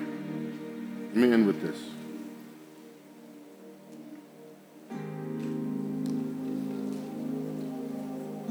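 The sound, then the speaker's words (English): Rain falls steadily on a dark, stormy night with a soft hiss, layered with low humming tones. A brief loud swell rises early, then the storm sound thins before returning fuller and louder for the second half. “It was a dark, stormy night.”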